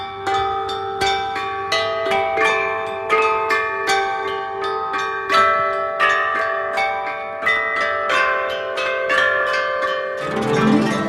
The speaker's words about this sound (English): In recent years, the orchestra has given performances showcasing ancient chime bell melodies, the culture of ancient kingdoms in China, and contemporary music.